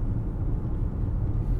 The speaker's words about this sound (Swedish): Ja, nu sitter jag i bilen på väg hem.